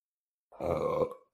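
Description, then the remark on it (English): A single loud burp rumbles for nearly a second, deep and throaty, then trails off into silence before a short breathy sound at the very end. “I'm burping a lot.”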